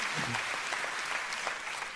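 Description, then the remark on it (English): A crowd applauds steadily during a Christian sermon, a dense wash of many hands clapping at once, sustained and fairly loud throughout with no voices standing out. “Jesus tells his disciples in Matthew 10, you can clap for that, amen.”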